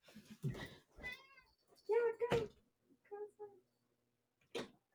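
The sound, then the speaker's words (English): A very fat house cat meows several times in a row, drawn-out plaintive cries as it tries to get out of a bedroom where it is shut in, with brief rustling and thumping noises between them. “my roommates have a cat”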